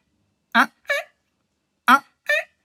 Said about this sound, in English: There's also a tree frog, for example, that's hard to see, apparently, but easy to hear. And you recognize them by this particular sound that they do. It's like...